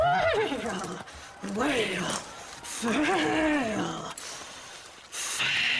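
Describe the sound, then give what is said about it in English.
Several wavering, high-pitched horse whinnies rise and fall in separate bursts, fairly loud, with a steady background hiss between them. “I'd like to get closer to them horses.”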